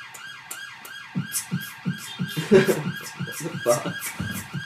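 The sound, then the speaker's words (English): An emergency vehicle siren wails in rapid, repeating up-and-down sweeps throughout, fairly loud and steady as it passes, with muffled voices and bumps audible underneath. “Just turn your sirens off, we're filming a podcast, selfish bastards.”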